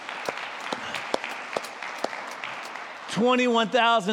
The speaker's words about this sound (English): 178,177 new believers. That's worth clapping for, right? Come on, that's good.